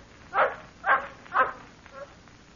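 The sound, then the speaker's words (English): A native dog barks three times in a steady rhythm, followed by a fainter fourth bark, sounding somewhat muffled over a quiet background hiss. “What's that? A dog barking.”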